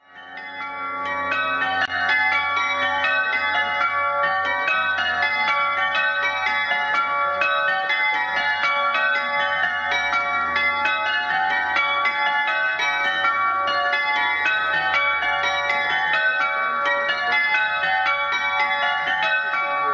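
A mini ring of change-ringing bells, the Chambre Ring, peals continuously, bright overlapping strikes tumbling in steady rounds for the whole stretch, loud with no voices.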